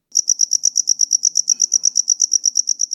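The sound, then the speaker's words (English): A cricket chirps in a steady, rapid train of bright, high-pitched pulses, about seven per second, loud, continuing without pause against an otherwise quiet background. “Crickets are so well known for their songs, they're even named after it.”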